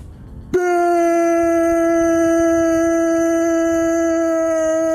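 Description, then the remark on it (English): A human voice says the single word "Bitcoin" as one long, steady, siren-like wail that sounds like a tornado siren. It starts abruptly after a brief murmur, holds a loud, nearly constant pitch and continues to the end. “Sounds a lot like the tornado siren, right?”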